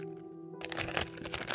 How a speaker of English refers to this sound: I'm going to put it in this baggie. I'm going to zip the baggie up. And I'm going to put it over here.